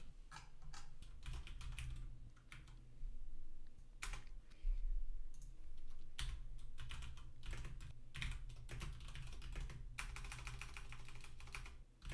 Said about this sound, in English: Nothing. I'm typing a tweet.